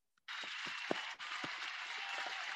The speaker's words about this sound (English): So a big applause for these two.